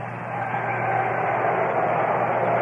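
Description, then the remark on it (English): A large baseball stadium crowd roars as fielder Bobby Mercer goes back for a catch, a steady, dense wash of noise that swells slightly in the first half second and then holds loud and unbroken, with no voices standing out. “And you hear the roar as we watch Mercer go back.”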